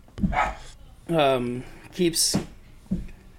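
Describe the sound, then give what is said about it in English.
Dogs bark in a quick, uneven series of about four or five sharp barks, one stretched into a longer yelping whine, loud against a quiet background. “I'm gonna lose my shit with these dogs.”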